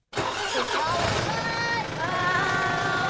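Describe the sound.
A school bus engine rumbles at a steady idle, a continuous low drone with bright voices chattering over it throughout, as a group of children help their friend onto the bus in the suburbs of Amman.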